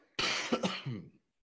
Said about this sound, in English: Sorry, I thought I was muted and I coughed. I thought I was getting sick and now I feel better, but I'm still kind of coughing.